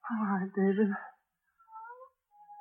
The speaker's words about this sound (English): You see, it's just an ordinary cat.